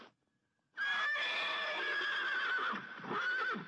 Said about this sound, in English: He saw what he wanted ahead of him, and running swiftly, he overtook the horse, unfastened the tow rope, and cast it off. Then he jumped on the horse's back and urged it to a gallop in the direction of the open country.